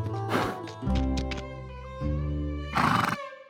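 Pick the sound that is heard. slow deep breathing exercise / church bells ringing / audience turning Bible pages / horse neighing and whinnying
horse neighing and whinnying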